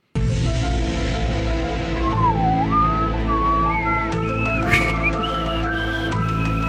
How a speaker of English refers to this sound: That was a bad whistle.